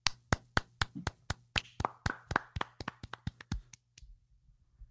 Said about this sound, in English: Can I clap?